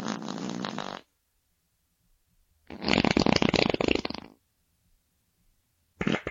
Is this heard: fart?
yes